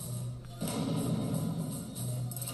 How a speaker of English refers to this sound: so now he's making thunder. Oh, that's what the clapping does. It makes the thunder.